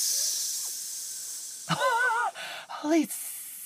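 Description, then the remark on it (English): A person imitates a snake with a long, steady hiss lasting over a second, followed by two short, wavering vocal noises. Fairly loud. “I'm a snake.”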